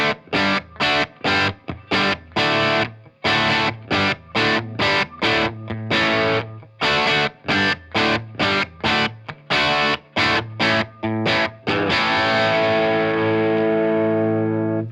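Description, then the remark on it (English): Distorted electric guitar played through an Iridium with a Storm boost pedal switched on plays a rhythmic riff of choppy, palm-muted chords, loud, ending on a ringing sustained chord that slowly decays. “It's refining the tones, making the sound more rich, and the highs are a little silkier, and adds interesting harmonics and the overtones to the part”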